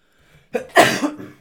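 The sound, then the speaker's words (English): A single sneeze: a short sharp intake of breath, then one loud, explosive, breathy burst that trails off quickly, with no talking around it. “Gesundheit. Was that you being allergic to how insincere I am?”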